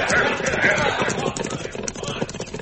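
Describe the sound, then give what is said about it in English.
Several horses' hooves clip-clop in a dense, overlapping patter that keeps up steadily as a group of riders moves off, with indistinct voices mixed in. “over my horse, Pedro. I'll see you later. Whenever you wish. Let's go, boys. Hit up!”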